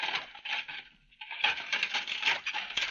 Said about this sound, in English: Yes, that's Mrs. Allen doing dishes in her kitchen. It sounds just about the same, doesn't it?